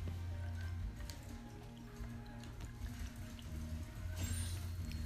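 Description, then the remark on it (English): Wet, squishy chewing of a keto snack of cheddar cheese, dried chorizo and olives, with irregular soft smacks and mouth noises repeating steadily over a low hum, no talking. “That's why it sounds like I'm chewing, because I am.”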